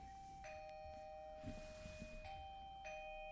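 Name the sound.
doorbell ringing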